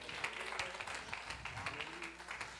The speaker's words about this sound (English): We thank God for our pastor. Come on, clap your hands for him.